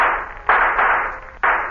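Shooting gallery gunshots from a gun held against the shoulder: three sharp, snappy cracks at uneven intervals, each trailing off in a short, hissy ringing decay, with no voices over them. One shot knocks the hat off a dummy target.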